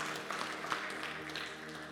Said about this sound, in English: Anybody in the room that has made this decision, come on, let's give a round of applause for this person in the back. Praise God. Praise God.